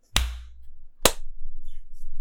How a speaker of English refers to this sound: Go 3, 2, 1, clap, and then we'll clap on clap. 3, 2, 1.